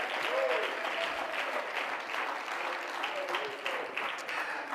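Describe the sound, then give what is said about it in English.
An audience claps their hands in praise of God in sustained, dense applause, a steady wash of overlapping claps at an even loudness, with faint voices calling out underneath. “Oh, let's clap our hands and praise Him tonight.”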